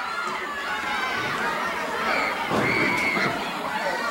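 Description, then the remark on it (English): A large crowd of wrestling fans roars and screams continuously during a professional wrestling match between Paul Orndorff and Bob Root, with excited chatter and shouting throughout and a piercing high-pitched shriek rising above the din partway through. “Well, the fans screaming, and that's what it's all about.”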